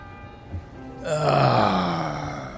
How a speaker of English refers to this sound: Those are church bells, sir. Tolling the time.